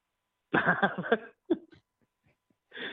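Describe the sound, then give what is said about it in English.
A loud, abrupt sneeze bursts out, followed by a couple of short sharp exhalations, a brief quiet stretch, then another noisy breathy burst at the end. “Oh, God bless you.”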